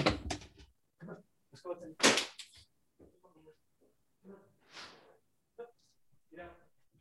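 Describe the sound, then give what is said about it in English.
A door is opened: a few sharp clunks and rattles of the handle and latch, spread over several seconds, with some quiet voice sounds mixed in between. “I just have to open a door.”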